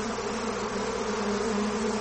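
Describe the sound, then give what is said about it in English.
A voice imitates a bee's buzz, holding one steady, droning hum for about two seconds at an even, fairly loud level, with no words spoken. “She'll like every time I open the door, it's a goddamn bee.”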